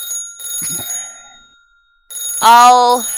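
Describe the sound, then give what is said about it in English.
A telephone rings in two bursts of bright, trilling, high-pitched tones separated by a short silence. A voice briefly cuts in over the second ring. “And the phone rings again.”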